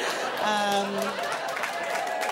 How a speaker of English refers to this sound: Oh, nice. Other Canadians clapping or just people appreciating Canadians.